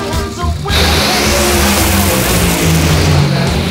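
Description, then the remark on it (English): Drag racing cars launch down the track, Coletta's car leaving first and Richie Crampton's reaching the finish line first in 3.738 seconds at 329 miles per hour, with a sudden, thunderous engine roar that bursts in after a brief quieter moment and stays loud and dense to the end. “Coletta leaves first, and Crampton gets to the finish line first.”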